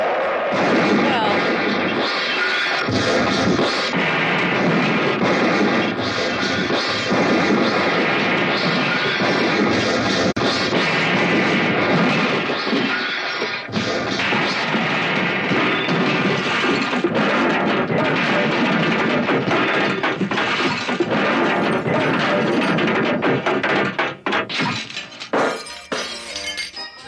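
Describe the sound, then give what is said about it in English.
A van carrying three nuns plunges off a cliff near the entrance to the Jack Murphy parking facility and explodes in a ball of flame: a long, loud stretch of crashing wreckage, shattering glass and rumbling blasts, dense and continuous for nearly half a minute before tapering into scattered crackles at the end. “However, the move, although executed with brilliant driving skill, thank you, proved unfortunate to the three nuns who occupied the van, which plunged off a nearby cliff, exploding in a ball of flame.”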